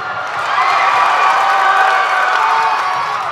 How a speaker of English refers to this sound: In fact, there's going to be probably a crowd noise.